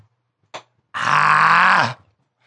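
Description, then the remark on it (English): A short breathy gasp, then a man's loud, strained groan held for about a second, low and gravelly with a harsh rasp, trailing off abruptly, as he chokes after taking a liquor shot. “You're screaming. He's choking.”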